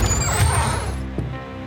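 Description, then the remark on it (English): A door slams open with a single loud, heavy crash, followed by a rumbling, rattling decay that fades over the next second or so. No voices are heard. “My human hurriedly stood and hid me behind her back right as the door slammed open.”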